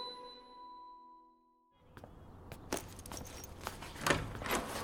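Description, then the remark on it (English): A bright, metallic tinkling ring fades out, then a bunch of keys jangles and clinks in quick, irregular bursts, with some shuffling movement, and no one speaking. “Do you have the keys? Sure do.”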